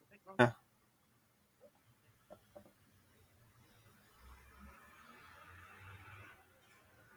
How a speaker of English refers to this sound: Yeah, I hear it also. Yeah. If your is it your iPods or your AirPods or something? There's a back, there's like a rustling sound or something. Is it? Yeah. Like paper flying or something. That's weird. Windows are all closed.